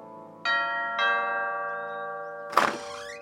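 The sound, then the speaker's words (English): A poor man rings the two-tone doorbell at a landlord's palatial mansion, with two clear ringing strikes about half a second apart whose tones linger and decay, followed by a brief rustling clatter near the end. “Rich strolled over to the landlord's palatial mansion and rang the bell”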